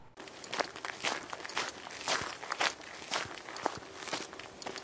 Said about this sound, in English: You begin to hear footsteps.